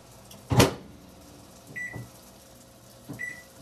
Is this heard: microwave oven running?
yes